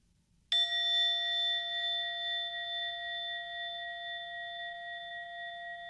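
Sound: meditation bell ringing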